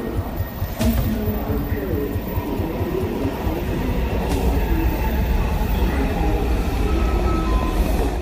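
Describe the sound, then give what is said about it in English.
A subway train on a morning commute from the suburbs of Washington, D.C. rumbles steadily along the tracks, with a loud, constant low roar, faint rhythmic rattling and brief squeals, heard from inside the car with murmuring voices in the background. “Then the subway.”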